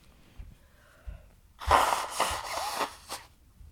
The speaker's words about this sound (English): Again, I'm going to blow my nose. I'm too lazy to just hold on.